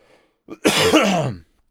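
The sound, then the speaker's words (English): A brief catch in the throat followed by one loud, raspy throat clearing that turns into a harsh cough, on its own, with no talking. “Well, it's like even sorry, in like that a coughing attack”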